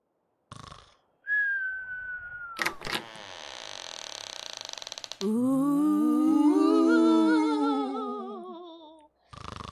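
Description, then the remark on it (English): A single sustained whistled note, slightly falling in pitch, followed by a loud creaking noise and then a long, wavering, groaning tone. No one speaks. “Wake up, you miserable prick whistle!”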